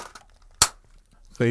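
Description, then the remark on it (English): A Christmas cracker pulled apart with a single sharp snap, a short, bright crack that dies away at once. Faint murmuring comes before it, and a voice starts up right after. “I've got two final crackers for Christmas.”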